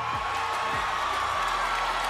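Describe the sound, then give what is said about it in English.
A large crowd at an awards show boos after Kanye West interrupts Taylor Swift's acceptance speech for Best Female Video, a steady, dense roar of many voices, with low drawn-out groans sliding downward beneath a continuous wash of crowd noise and no clear speech. “Boos from the crowd, a stunned look from Beyoncé, a pop culture scandal playing out in real time.”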